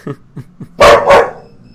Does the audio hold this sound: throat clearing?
no